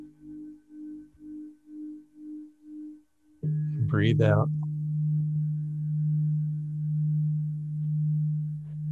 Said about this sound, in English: Do you hear the chimes? Yeah. Okay. Yeah. So let's just breathe in on one chime.